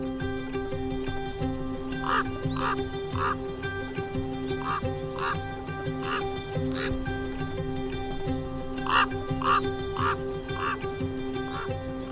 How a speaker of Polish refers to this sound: ptaki te nadają sobie imiona i się rozpoznają, czy też wołają w specyficzny dla siebie sposób i odpowiadają sobie. I właśnie czasami naśladując kruki udaje się, jeżeli mamy duże szczęście, udaje nam się właśnie tego konkretnego osobnika przywołać.